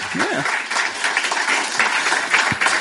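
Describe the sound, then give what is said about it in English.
A crowd applauds steadily, a dense wash of many hands clapping at even loudness throughout, with a brief voice-like sound near the start, after a screening of the film The Man Who Loved Flowers by Five After Five Productions, an adaptation of a Stephen King short story. “All right, have a round of applause for the man who loved flowers and Five After Five Productions.”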